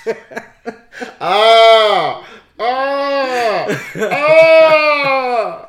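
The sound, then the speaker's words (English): A voice imitates screams of pain: a few short, choppy yelps, then two long, loud, strained wails whose pitch rises and falls, with no other talking. “Yo, that's how you scream?”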